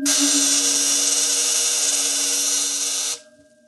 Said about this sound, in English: If you will kindly stay clear of the terminal areas, I will activate the field. What's happening? The field is vibrating at the cycloid rate set on the crystals. All right, it's ready for discharge. Now.